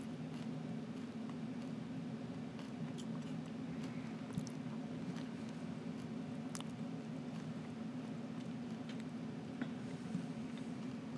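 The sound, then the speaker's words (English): Soft, irregular crunching and chewing as someone munches biscuits, with scattered crisp clicks over a steady low background hum and no talking. “Sorry for the crunches, everybody.”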